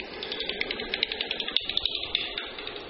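Daubenton's bat, a bat that flies along water, calls through a bat detector: a fast, steady train of dry ticking clicks, roughly ten a second, over a faint hiss, with no talking.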